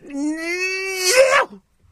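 Tennis player Maria Sharapova lets out one loud, drawn-out scream on court lasting about a second and a half, its pitch edging upward before it turns harsh and breathy and cuts off abruptly.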